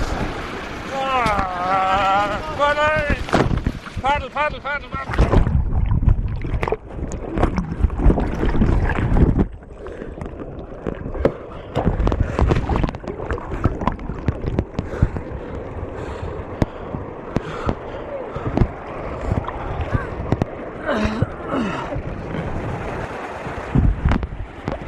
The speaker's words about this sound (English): I'm standing on the weir. I've just fallen in, and the boat and the paddle have gone down the river, and the lads are bringing it back up. Oh, that was stupid.